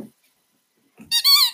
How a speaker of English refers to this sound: Could you do a squeaky? I let Sally bring the outside ball in tonight. Let's see if we can get her to squeak it for you so you can have the sound of joy in your ears.